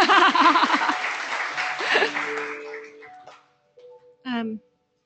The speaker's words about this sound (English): Tom, could you stand up? Tom, we stay at Tom's house. Give Tom an applause for hosting us so beautifully.